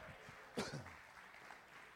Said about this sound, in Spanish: Dese un aplauso a usted mismo.